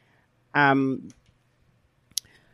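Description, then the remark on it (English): A short, bright cash-register ka-ching rings out once and fades quickly, followed a moment later by a single sharp click against a quiet background. “Ka-ching, ka-ching. I don't know where the... Coins? I was looking for this one.”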